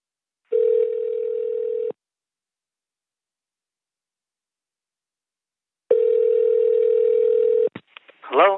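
An outgoing phone call rings through during a live call on the Voice in the Wilderness Internet Radio show: two long, steady, buzzy tones separated by several seconds of silence, then a voice briefly starts to answer at the very end.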